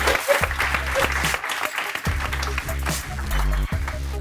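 Dense, sustained applause from an audience for a guest speaker, steady and fairly loud throughout, with many overlapping hand claps forming a continuous rushing texture.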